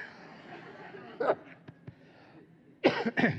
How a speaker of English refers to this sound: You ready for it? Everyone cough first.